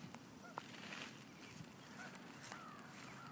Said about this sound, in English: You can probably hear those geese honking a little bit. The dog just stirred up a whole flock of them.